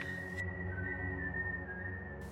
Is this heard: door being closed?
no